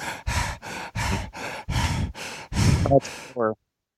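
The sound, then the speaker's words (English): A person imitates their fat beagle Rudy panting at night: about eight rhythmic, breathy huffs in quick succession, ending with a brief voiced whine. No other voices. “He does this thing at night where he starts panting.”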